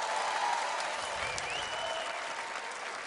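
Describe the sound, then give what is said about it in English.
Steady, dense applause from an audience for a woman, a continuous wash of many hands clapping at even loudness throughout, with a faint murmur of voices underneath. “Give this lady a big clap.”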